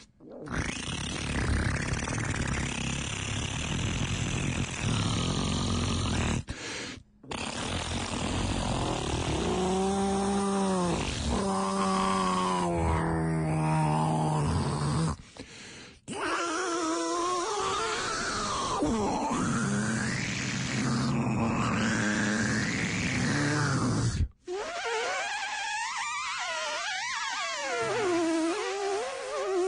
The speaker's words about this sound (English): a mono cheek squeak on the Nardwuar to Human Serviette radio show